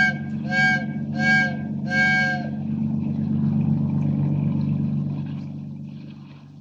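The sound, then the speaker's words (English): A ship's whistle signals a freighter to heave to with three short, evenly spaced blasts, rich and reedy, over a steady low engine rumble that carries on alone after the last blast. “Signal that freighter to heave to. Give her the whistle.”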